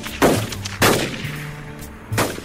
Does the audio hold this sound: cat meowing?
no